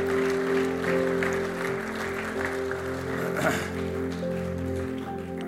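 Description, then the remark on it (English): An audience at a church gathering claps steadily for several seconds, a dense wash of many hands, while a sustained, low musical drone hums underneath throughout. “How about giving Chris a big hand?”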